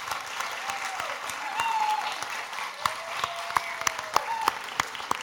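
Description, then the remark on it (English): An audience applauds the cast after a performance in a steady, dense wash of clapping that holds throughout, with a few sharper individual claps popping out near the end and faint whistling tones mixed in. “So can we give them a round of applause?”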